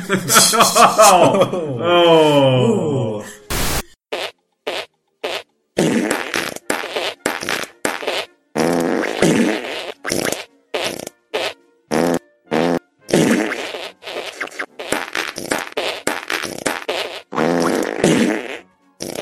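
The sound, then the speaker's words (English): Loud fart noises rise and fall in pitch, sputtering out the Ground Force theme tune as a long run of short, rhythmic blasts separated by brief gaps. No one speaks. “Oh, the crowd's alive with the sound of an old Jewish woman farting the ground force theme.”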